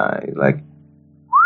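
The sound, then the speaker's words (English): A person whistles a short, sharp rising note, the kind used to call someone, right after a brief bit of speech; the whistle is loud and cut off quickly. “How does he whistle to call you? And how does he whistle to call Kendi?”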